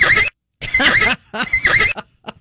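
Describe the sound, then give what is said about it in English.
A horse, Charlie, whinnies loudly in three quavering, high-pitched bursts separated by short pauses, trailing off with a couple of faint snorts. No one speaks. “And their horse, Charlie, loves the morning show.”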